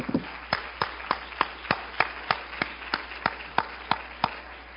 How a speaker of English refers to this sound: Jesus is the central portion. Give Him a hand clap like we're apostolic.